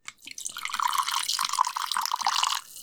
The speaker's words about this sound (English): Let's pour some of that whiskey.